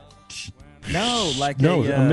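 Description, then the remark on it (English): Someone vocally imitates a spraying sprinkler, like an imagined bear-spray misting unit set up around a tent: a short hiss, then a loud run of sputtering, hissy noise mixed with wavering voiced tones, lasting about two seconds. “It'd be like a sprinkler, and it just goes.”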